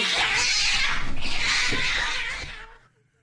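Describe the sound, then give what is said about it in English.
A cat, played from a video of a man petting his cat, lets out loud, drawn-out yowling cries, two swelling wails running together for a few seconds before cutting off abruptly, with no talking over them. “Easily number one cat video I've ever seen.”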